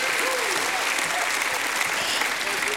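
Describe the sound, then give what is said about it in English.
Sustained, dense applause from a large crowd fills the space, steady and loud throughout, with faint voices and a few whoops mixed in beneath the clapping. “Give him a hand clap.”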